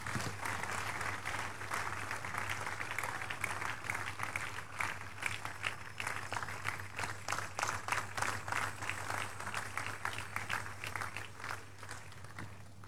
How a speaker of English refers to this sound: Give Jesus a big, big hand, everybody.